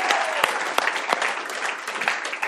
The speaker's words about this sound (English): Everybody give Isaac a round of applause.